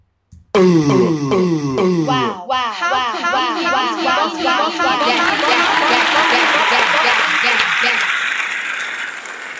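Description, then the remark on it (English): A loud burst of crowd cheering with high whoops and wails, quickly swelling into a dense, steady wash of clapping that hisses like heavy rain, sustained for several seconds. “It sounds like rain. That doesn't even sound like a fucking applause.”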